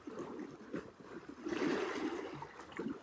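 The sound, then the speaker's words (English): Water gurgles and burbles continuously, swelling into a louder, churning rush midway before settling back into bubbling trickles, with no voices present. “Gurgling.”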